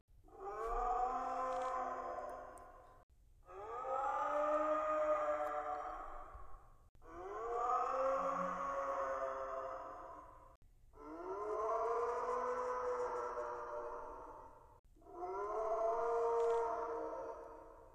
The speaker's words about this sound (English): But here's a sound that I really think fits a dragon. I'm not sure what animal it comes from, but it's these distant howls.